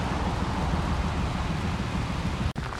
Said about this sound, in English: We'll check back when the rain stops. Should only be a 10-minute squall.